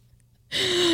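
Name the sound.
person imitating a growl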